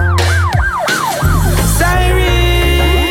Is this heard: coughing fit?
no